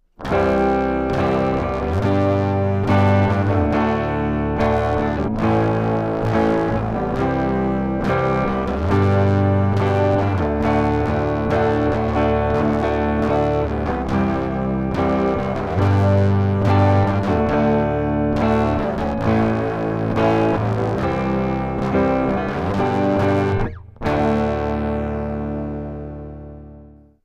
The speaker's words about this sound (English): First, we'll play a standard bass-style baritone track, and then we'll run it through a clip channel strip and back into the DAW to get our early distortion tones.